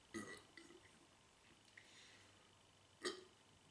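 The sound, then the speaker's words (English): A couple of short, muffled burps, one right at the start and another a few seconds later, with faint breathy noise and near-silence in between and no clear talking. “Oh, sometimes the full burp doesn't come straight away and you can't talk for just a couple seconds.”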